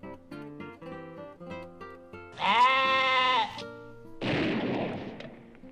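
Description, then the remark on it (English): A single loud, wavering sheep bleat rings out at the end of a bumper, after a short plinking tune, followed by a harsh, noisy burst that fades out. “Why did he kill that sheep at the end of his bumper?”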